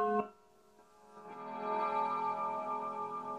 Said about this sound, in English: And there's Stephanie's clock.